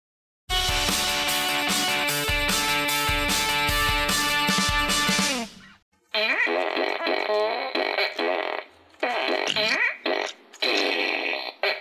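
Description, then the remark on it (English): A loud, sustained fart noise made with the lips, a buzzing raspberry lasting about five seconds, followed by a short pause and then animated voices talking. “I'll do a fart noise with my mouth at just randomly throughout the day.”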